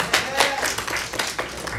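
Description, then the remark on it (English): A crowd at the Van Meter Visitor Festival, held this year in a building, applauds, a dense, steady patter of many hands clapping at once that stays at an even, moderate loudness for a couple of seconds. “Yes, give an applause for that.”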